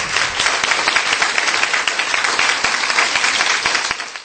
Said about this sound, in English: Now, I know I shouldn't be doing this, but since we only had two finalists in that one, can we give a nice big round of applause for Steve Aganti for coming second?